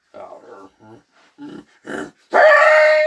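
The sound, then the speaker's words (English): A person lets out a growling war cry: a few short, rough vocal grunts, then a loud, harsh, strained roar held for about a second, like a snarling animal. “Want to hear my war cry?”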